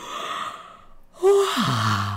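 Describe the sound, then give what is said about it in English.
A long, loud full-body yawn with the arms taken in, fingers clasped and a stretch: a breathy inhale rising into a voiced tone that slides down into a low, drawn-out groan, with no talking. “Now you can take your arms into the yawn and do a real yawn where you clasp your fingers together and stretch.”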